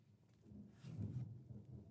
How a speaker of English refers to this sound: There's the thunder.